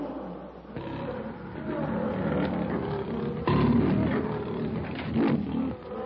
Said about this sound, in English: With a savage growl, the huge king of beasts gathers his great tawny body for the charge. His yellow-green eyes, fixed in a baleful glare upon Kailuk, blaze hatefully. Suddenly, with a roar of savage fury, Numa leaps straight for Kailuk.